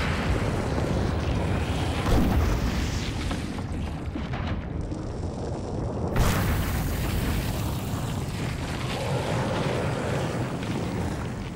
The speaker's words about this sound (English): While the surface of the ocean is still 2 miles up, the volcano spews out enough lava to create a first platform. This becomes the foundation of an undersea mountain.